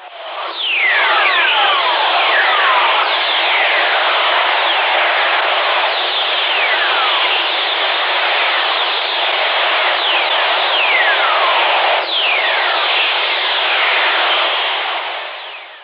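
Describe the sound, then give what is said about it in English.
Radio signals from lightning here on Earth: a steady wash of hissing static threaded with many gliding, descending whistle tones and a sharp crackle near the end, continuous and fairly loud with no voices. “So, so again, it's lightning, but it's somewhere else. So let's listen.”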